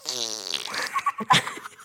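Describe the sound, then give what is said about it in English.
A sputtering fart noise blown through the lips, starting with a long buzzing raspberry that breaks into a few short pops before trailing off, loud with no talking. “You have to stick out your lips and let that air get in there.”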